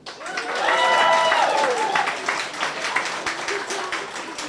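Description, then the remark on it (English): An audience at the Sitka Tells Tales storytelling event in Sitka, broadcast live on KCAW from Harbor Mountain Brewery, breaks into steady, dense applause with many hands clapping at once, and a few high cheers or whoops rise over it early on before the clapping carries on and thins slightly. “Let's hear more applause.”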